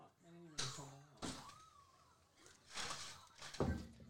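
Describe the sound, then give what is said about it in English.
A man struggles to close his door: a series of irregular clunks, knocks and rattles over a few seconds, with muffled voices in the background. “figuring out his door over there”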